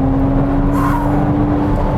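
A hybrid supercar accelerating hard as the driver pushes the throttle, with a loud, steady engine whine over heavy road rumble that fills the full two seconds. Nobody speaks.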